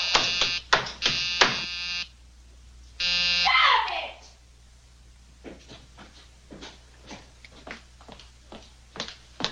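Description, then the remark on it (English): A harsh electric call buzzer sounds in several loud, rasping bursts, two short ones then a longer press, followed by quieter shuffling and faint movement. “What were you ringing for?”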